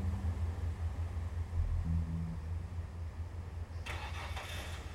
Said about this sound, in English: The car started up and drove off.